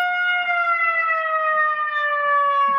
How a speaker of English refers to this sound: So I was looking at Twitter and I was trying to see what was going on, and there are sirens going off all over Dallas right now.